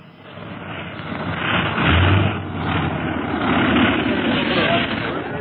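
A plane's engine drones steadily as it lands and taxis, a rough, rumbling roar with a deep low hum underneath, swelling slightly louder around the middle and again toward the end.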